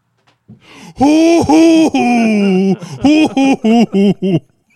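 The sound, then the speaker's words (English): A man's voice imitates an owl as the punchline of a knock-knock joke, giving a few long, loud, wavering hoots followed by a quicker run of about five short, evenly spaced hoots at a steady mid pitch. “It's me, a fucking owl.”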